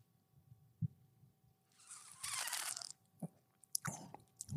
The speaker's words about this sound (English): Let me take a sip of it, because, that's what I'm... that's the whole reason to have this bottle here.